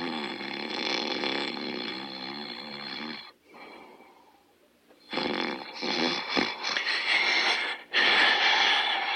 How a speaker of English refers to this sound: The clerk, an old lady in a maxi, was fast asleep on her chair, her lips quivering and nostrils flaring as she snored.